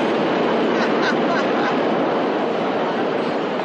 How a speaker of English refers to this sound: Oh, do you feel the breeze from the subway? Oh. Isn't it delicious?